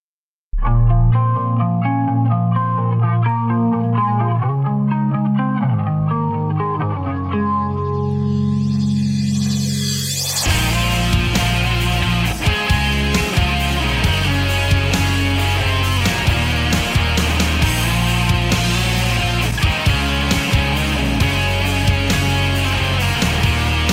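Band music with no vocals: a mellow, effects-laden guitar intro with sustained chords, then about ten seconds in the full band crashes in loud, dense and distorted with steady drums.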